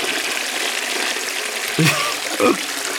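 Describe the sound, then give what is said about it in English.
A toilet flushing: a steady, broad rush of water hisses throughout, with two brief louder gurgling bumps near the end. “Give it a flush.”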